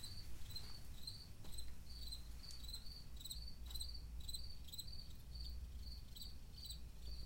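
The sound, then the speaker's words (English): Crickets chirp steadily in quick repeating pulses over a low, constant background hum, with no voices, like a warm evening outdoors, near the end of August. “And the beautiful thing about this space right now is the crickets singing along with me.”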